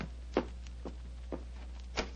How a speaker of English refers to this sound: I can hear footsteps on the stairs. I'll go and have a look.